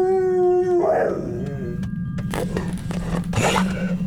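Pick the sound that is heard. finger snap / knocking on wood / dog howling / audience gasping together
dog howling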